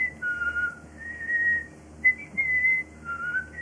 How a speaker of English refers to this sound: What sounds better, him whistling or me?